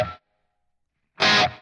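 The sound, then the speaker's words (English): Two quick, bright electric guitar hits separated by a pause of silence, the second louder and fuller with a gritty, effected tone and a short, faint plate reverb tail before it cuts off; played as a quick note to show the reverb tail. “If I hit a real quick note, you'll hear kind of the tail. It sounds like I'm in a room.”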